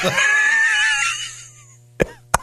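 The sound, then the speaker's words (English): A voice imitates the laugh of Muttley, the cartoon dog: a strained, wavering wheeze lasting about a second, then a pause and two sharp, breathy cough-like bursts, fairly loud. “Cartoon dog. One of the greatest cartoon dogs of all time who, oddly enough, sounds like a smoker with a cough.”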